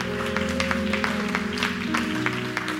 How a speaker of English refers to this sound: Let's give it up. Let's give it up for the Lord. Let's give Him a hand. Woo! Just keep clapping if you can.